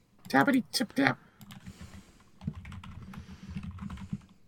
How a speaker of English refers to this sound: Y'all heard me typing? Was that you typing? Yeah, you could tell I'm a gamer because you could hear me typing. That's gaming keyboard. Click, click, click. Click, clink, clink, clink, clink.